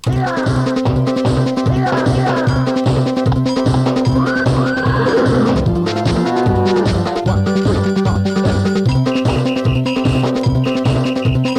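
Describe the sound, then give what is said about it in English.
A horse whinny, a sound effect from a computer, rises and falls midway through a loud, busy electronic instrumental piece driven by a steady pulsing beat. “Think that I'm just haphazardly pressing buttons on the keyboard and just playing with the sound effects that are on the computer, the sound of mooing cows and horse neighing and that kind of thing.”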